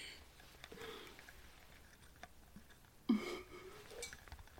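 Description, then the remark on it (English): A voice imitates water with the mouth: soft, wet clicks and ticks scattered over a breathy hiss, then one louder plopping gulp partway through. No words are spoken. “I'm trying to make water noises.”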